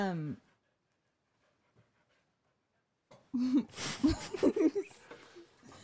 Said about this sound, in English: Sorry, my dog is wandering around us. She is in here with us because I think that she will not bark if she's near me versus being locked out of the room.